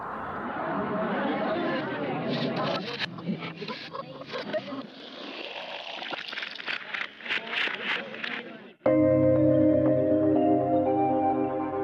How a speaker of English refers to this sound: And it's this tape loop getting sped up really fast.